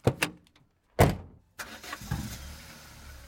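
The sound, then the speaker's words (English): The engine of a vintage Mercedes-Benz W25 Silver Arrow race car cranks with a couple of sharp bursts, then catches and starts, settling into a rough, rumbling run that stays loud. “My beautiful Mercedes-Benz W25 Silver Arrow, nicknamed Monstro, currently disguised as an everyday Cadillac V16.”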